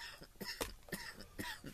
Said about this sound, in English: You know, it seems like you hit record and was holding that cough and just hit record and cough.